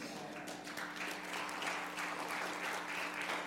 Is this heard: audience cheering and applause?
yes